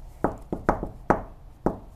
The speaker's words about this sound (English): Knock on wood.